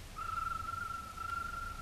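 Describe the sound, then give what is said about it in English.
A single long signal whistle from Kolo in the hills, held at one steady, fairly high pitch for nearly two seconds, fairly faint over a low rumbling background, with no one talking. “It's Kolo. That's his whistle.”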